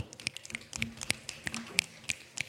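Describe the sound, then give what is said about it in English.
A quick, irregular patter of crisp hand taps, a dozen or so sharp clicks over a couple of seconds, imitating the sound of rain drops. “We may ask you to help create the sound of rain.”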